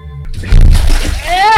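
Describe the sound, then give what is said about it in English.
Heavy sloshing and splashing as someone wades through a river full of thick, muddy sludge, a continuous churning that swells after the start, with a brief vocal sound rising near the end. “It feels like this river is full of sludge or something.”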